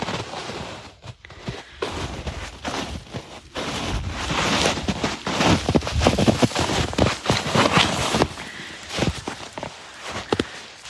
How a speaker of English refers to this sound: Snow's crackling.